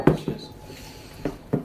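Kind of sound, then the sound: household object, beer glasses clinking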